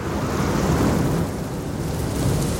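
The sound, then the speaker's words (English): A loud explosion sound effect: a deep, sustained rumbling roar that holds steady for a few seconds without a sharp initial bang, with no voices present. “That was a loud explosion. Oh, it got louder.”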